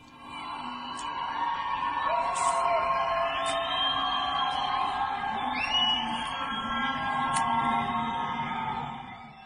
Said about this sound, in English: On Tuesday night, people in Tehran's Chitgar district were heard cheering and whistling right after their team was defeated.